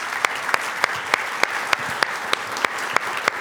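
An audience applauds steadily, a dense wash of clapping with one nearby pair of hands beating out sharp, evenly spaced claps on top. No one speaks.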